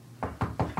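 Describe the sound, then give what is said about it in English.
Four quick, evenly spaced knocks, made by a man imitating a knock at a door, moderately loud with no talking around them. “And then I hear a knock at the door, but it's like literally him going like this.”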